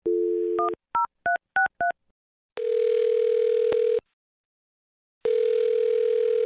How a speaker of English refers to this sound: All right, well, I'm going to dial his phone number and see if we can find out why, okay?